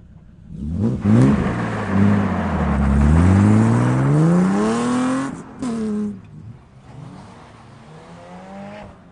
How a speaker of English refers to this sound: We got a lot of cars in grid here. It's practice right now. Should be a fun day. I want to listen to this this rad E36 run.